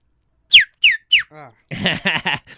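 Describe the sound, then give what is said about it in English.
A person imitates a bird call: three quick, high, downward-swooping whistled chirps, a brief lower hum, then three louder, raspier squawk-like bursts. “Do a bird noise.”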